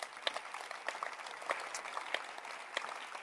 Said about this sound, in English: Clap for Jesus.